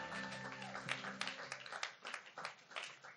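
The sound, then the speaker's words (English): A church audience applauds the worship band, a scattered crowd clapping softly, with a faint lingering musical tone at the start that fades as the clapping carries on. “Why don't we give them a clap?”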